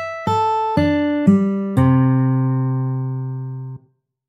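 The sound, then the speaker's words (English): Five sustained root notes, E, A, D, G and C, played in quick succession moving anticlockwise around the circle of fifths, each about half a second apart, with the fifth and lowest, C, ringing out for about two seconds before cutting off. No voices are heard. “For example, start on E, then play A, D, G, and finally C. Here's how that sounds.”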